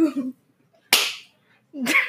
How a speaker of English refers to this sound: Never disrespect the queen or you will get slapped 10 times harder.